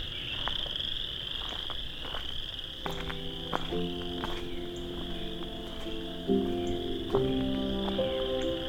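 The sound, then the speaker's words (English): A dense chorus of chorus frogs calls continuously at evening, with a steady high insect-like trill underneath and overlapping harmonic croaks joining in, moderately loud, no voices. “I wonder if just because of how loud the frogs are, it's only singing in the tones that know it'll be heard in.”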